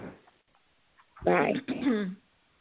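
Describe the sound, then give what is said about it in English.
A dog barks in two drawn-out, fairly loud bursts close together, with a faint bit of murmuring before them and quiet afterward. “Well, as my dog in the background is telling us, we're going to California”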